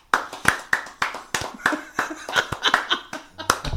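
A slow clap given as mock applause for a man who has lost weight: about a dozen sharp, evenly spaced hand claps at a steady, unhurried pace, crisp and fairly loud, with no talking over them.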